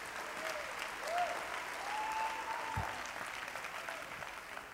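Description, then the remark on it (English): A church audience claps steadily in praise to God, a dense, continuous wash of applause, with a few faint whoops or voices rising above the clapping. “Clap your hands to the Lord and give God praise.”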